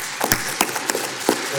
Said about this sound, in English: So I'd like us to give a special round of applause